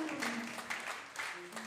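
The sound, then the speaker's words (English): A church audience applauds steadily during a morning service, applauding themselves. The clapping is a dense wash with a few swells, while a low sustained tone and faint voices hum underneath. “Can you put your hands together for yourself?”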